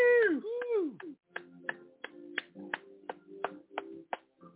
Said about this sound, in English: Woo! Clap your hands for me. I want to see how you clap.